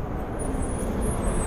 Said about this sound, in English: It's always traffic. Y'all know what time it is. It's lunchtime out here, so you know everybody out in the street.